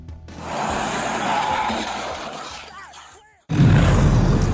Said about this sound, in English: It looks like a stunt in a movie, but this was a real car crash, and we'll tell you what happened.